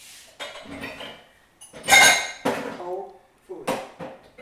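A drinking glass smashes with a loud, bright crash, followed by scattered clinks of pieces settling. Brief voices murmur around the breakage.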